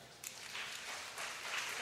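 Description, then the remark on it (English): A stand-up comedy audience claps in a steady, dense wash of hand claps, starting softly and swelling after a moment, continuing evenly without any talking over it, answering the comedian's question of who has a TV in the bedroom. “Who has a TV in the bedroom? Clap.”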